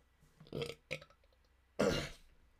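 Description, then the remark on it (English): A loud burp: two short throaty bursts followed by a longer, louder belch about a second later, with no talking around it. “Out of the three burps you've heard in this podcast, rate them in the comments.”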